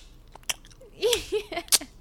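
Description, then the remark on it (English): A voice imitates a girl chewing into a phone during a call, with wet, smacking mouth noises and a few sharp clicks, interspersed with short nasal hums, fairly quiet and irregular over about two seconds. “And she's like, oh, I was just eating. And I'm like, why do you call someone with a mouthful of cud?”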